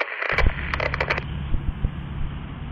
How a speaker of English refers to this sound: This next file is going to be 2 minutes long. So again, audio files or people that don't like static, maybe just fast forward in 2 minutes. You won't miss that much.